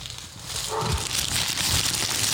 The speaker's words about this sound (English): Yo, the ASMR is being ruined by a rude-ass dog. Whose dog is that?